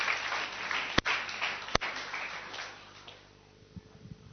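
An audience claps for themselves in a dense, crackling burst that stays loud for about two and a half seconds, with a couple of sharp louder claps, then thins and fades to a few scattered claps.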